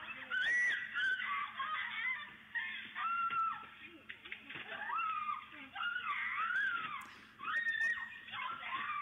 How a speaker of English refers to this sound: Now she's screaming bloody murder, but nobody's paying attention. She's shouting in Chinese, help me, help me.